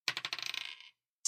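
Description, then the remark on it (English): A rapid series of bright clattering clicks, like dice tumbling across a hard table, slowing and fading over about a second, followed by one more sharp click after a short pause. The dice are rolled for a sling attack in a role-playing game and land on 19, a critical hit. “Since I get bonus crits on 19, that's a crit.”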